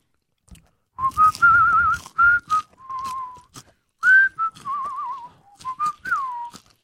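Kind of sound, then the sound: human body sound, human whistling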